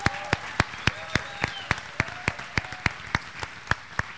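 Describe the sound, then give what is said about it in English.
An audience applauding to thank Fieldstone United Methodist Church, with sharp claps landing in a steady, even rhythm, roughly four per second, over a soft wash of crowd noise throughout. “And so we want to say thank you and give you a big round of applause.”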